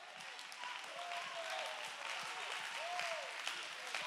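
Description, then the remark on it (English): A crowd claps steadily and densely for several seconds, the applause holding at an even level while a few voices call out and rise in pitch above it. “I lift my voice because I can lift my voice. I clap my hand.”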